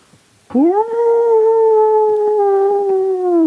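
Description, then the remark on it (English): A wolf's howl rises quickly and holds a long, steady, mournful note for about three seconds, loud, with no talking. “There's fucking 14 sets of eyes. 7 wolves.”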